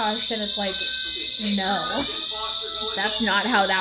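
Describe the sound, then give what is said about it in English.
A door alarm sounds a steady, shrill high-pitched tone that runs unbroken beneath a woman talking, staying loud and constant from start to finish. “I don't think that's a fire alarm. That's the door alarm.”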